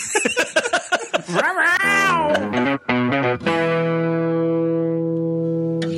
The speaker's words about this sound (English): Can somebody tell that house cat to stop partying?